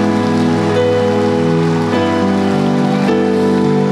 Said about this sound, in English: Now I want you to clap like a miracle took place.